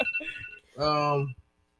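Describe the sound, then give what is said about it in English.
A loud, buzzy alarm-like beep holds steady for about half a second, preceded by softer high electronic tones, then cuts off into near silence. “You got alarms going off in here?”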